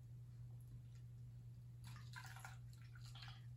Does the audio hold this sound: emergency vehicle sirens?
no